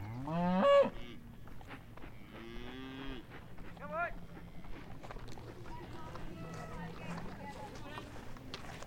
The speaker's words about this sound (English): Just going through a farmyard now. The cows are very frisky here, mooing away, and we're just having to kind of slalom them through the gates into the farmyard. I think the farmer's bringing them in. Ooh, they don't sound happy.